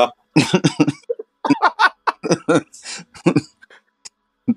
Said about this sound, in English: Clear your throat.